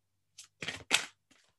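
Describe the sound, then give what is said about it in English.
A deck of oracle cards is shuffled for a July card reading: a quick papery flick, then two longer rustling riffles in a row, ending with a faint soft tap as the deck settles. “Give it one more shuffle”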